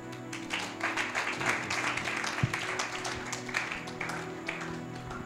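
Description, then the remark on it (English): A crowd applauds steadily, many hands clapping in a dense, continuous patter of moderate loudness that holds for several seconds, with a faint low hum underneath. “It's a good place to clap.”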